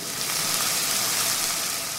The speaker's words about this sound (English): But if you said a carnival, just listen to all those carnival sounds. Sizzling food.